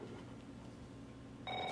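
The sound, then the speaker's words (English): A low, steady hum fills most of the stretch, then an electronic telephone ring abruptly chirps in at the end, a bright, piercing tone layered with higher harmonics and louder than the background. “I think I hear chirping.”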